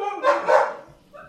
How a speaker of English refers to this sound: Damn, these dogs are just high strung. Yeah, gotta take a chill pill.